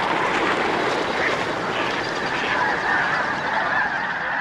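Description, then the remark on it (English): A flock of about a thousand snow geese calling all at once, a dense, loud, continuous wall of honking and yelping as the birds take off together, with no voices. “A thousand snow geese take off all at once, the black flag flight feathers of the tips of their wings sure like the blades of powerful engines.”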